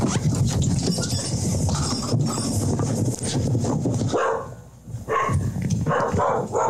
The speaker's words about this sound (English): Okay, the problem here is the dog starts barking usually. So we're going to have to go quick. Yeah, pop on the sun gun. There goes the dog.